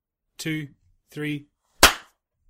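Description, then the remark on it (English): Two short voiced syllables come first, then a single sharp, loud hand clap, made to sync audio recordings, with a bright crack that cuts off quickly into silence. “We'll do a clap, and that might help.”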